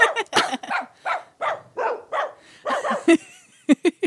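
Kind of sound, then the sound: animal, dogs barking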